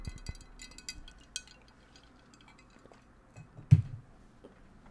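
ice clinking

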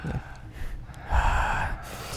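heavy breathing

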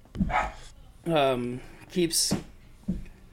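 dogs barking

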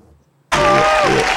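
applause

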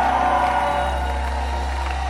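audience shouting and cheering

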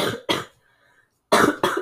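cough

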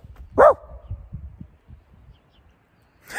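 dog barking

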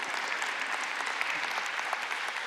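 audience applause

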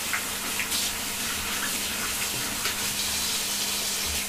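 water running

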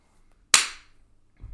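applauding

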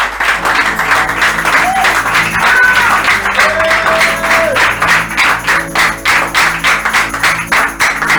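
audience clapping

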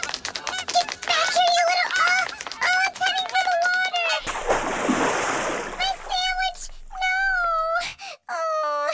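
goose honking

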